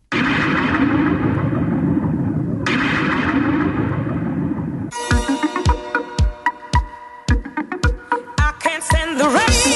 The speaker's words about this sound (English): they could be used as effects, such as this fake thunder in Eruption's I Can't Stand the Rain